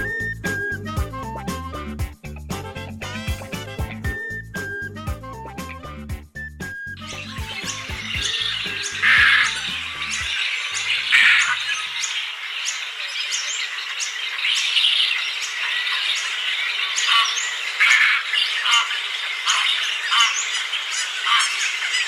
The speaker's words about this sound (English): Do you hear that awful cacophony? That, my friend, is the sound of a mass ibis breeding colony. To many people, that is just a squawking mess, but to some, it is a beautiful sound that hasn't been heard in nearly a decade.